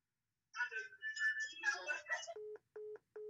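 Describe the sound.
A short burst of muffled, garbled voice-like sound, then three evenly spaced phone tones as a phone calls back: steady, mid-pitched electronic beeps, each about a quarter second long, with brief gaps between them.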